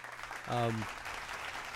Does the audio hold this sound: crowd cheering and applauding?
yes